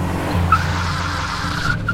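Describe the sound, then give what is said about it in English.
A Datsun 280Z's engine rumbles as the car approaches a street crosswalk and its tires let out a sharp, rising squeal, the skid sustained for a couple of seconds with no voices present. “Then I see myself in my costume start to step into the crosswalk just as the car approaches.”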